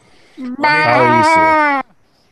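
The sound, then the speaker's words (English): A person gives one loud, drawn-out goat bleat, a wavering nasal 'baa' lasting over a second, with no other talking around it. “Good to see you in the Power Goat.”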